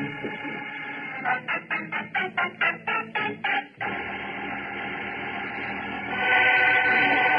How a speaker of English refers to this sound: Well, I hear by the heirloom radio old cuckoo clock that it's now time to go. That clock has been in my family for many generations, having been imported from Switzerland in the late 1700s.